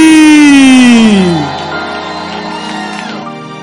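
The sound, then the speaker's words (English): A loud, drawn-out shout slides downward in pitch for over a second, then gives way to a steady wash of crowd noise with clapping, scattered shouts and cheering from an audience standing at a church service. “Why don't you stand to your feet with a clap and with shouts of Jesus joy.”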